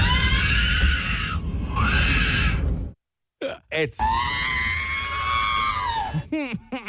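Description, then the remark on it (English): A baby screams loudly on a plane in long, piercing, warbling wails with sweeping pitch, broken by a brief silence, over a steady low rumble of cabin noise. “Well, there's a video going around of a baby screaming on a plane.”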